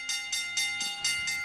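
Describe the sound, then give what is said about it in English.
A lunch bell, rung on the ESPN Pittsburgh radio show In the Locker Room with Wolf and Starks to signal that it is almost lunchtime, rings in a quick, steady series of about six bright, metallic strokes, each with a sustained high ringing tone, with no voices over it. “That dinner bell gets better and better. It is a lunch bell of love.”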